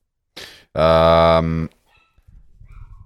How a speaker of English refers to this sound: If you can hear that, that's my bloody dog. Yeah, I can't hear that. She's going crazy. She thinks there's a mouse under the fridge, and there is not.